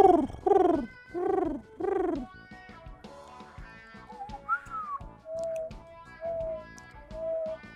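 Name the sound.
person imitating pigeon cooing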